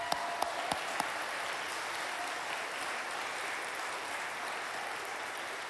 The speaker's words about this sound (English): Can we just give our ladies a big round of applause?